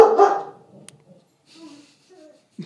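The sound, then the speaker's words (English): A dog in a studio lets out one loud bark, followed by a stretch of quieter, thin whimpering sounds and a brief final noise. “Sorry guys, someone let a dog in the studio.”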